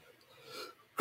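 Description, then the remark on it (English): A soft, breathy intake is followed by one sudden, loud sneeze burst right at the end, with no talking. “oh, excuse me. Bless you.”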